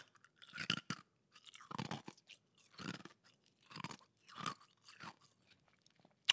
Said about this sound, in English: Oh, it's ice. I'm going to put my lip gloss on it. Crunch it in the microphone. We love an ASMR moment.